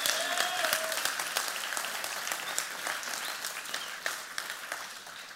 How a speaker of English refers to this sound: Would you give them a round of applause just real quick? Thank you for that.